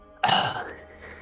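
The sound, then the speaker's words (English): A voice imitates a deep, monstrous sniff: one sudden, loud, breathy inhale that swells in at once, then rasps and fades over about a second, with no talking. “You hear the sound of a deep sniff.”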